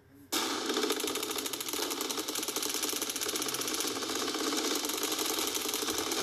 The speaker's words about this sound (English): I don't know why I just played a bunch of gunfire as the introduction to this podcast. It felt random.